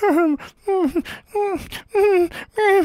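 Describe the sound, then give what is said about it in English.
A person imitates the labored breathing of a wounded dog lying with an arrow in its side: five rhythmic, strained, groaning exhales separated by breathy gasps, fairly loud, with no other talking. “The dog is laying there with an arrow in its side, and you still see it labored breathing like...”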